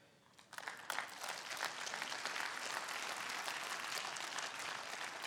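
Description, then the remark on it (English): An audience breaks into applause: many hands clapping in a dense, steady patter that swells quickly after a brief quiet start and holds at a fairly loud, even level. “And for those of you that didn't clap, you're going, what does that mean?”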